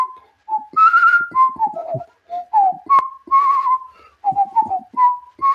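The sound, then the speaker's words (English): A person whistles a lively, bouncy tune, the notes sliding and trilling in quick phrases with short breaths between them, clear and fairly loud with no talking over it. “You do have a whistling talent.”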